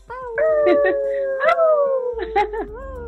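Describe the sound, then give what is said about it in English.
Several voices howl in imitation of wolves, overlapping long wavering tones that rise and fall, loud, with a few yips mixed in before the chorus trails off. “Let's get some wolf howls in there.”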